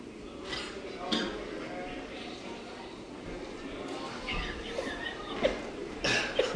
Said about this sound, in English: Hey, what kind of cough was that? I thought it was going to be bigger.